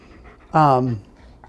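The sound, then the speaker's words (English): A pet dog breathing right up against the microphone and in the speaker's face: one loud, half-second breathy huff with a tonal, slightly falling pitch, then quiet low background. “If you hear my dog's breathing, yeah. It is actually in my face.”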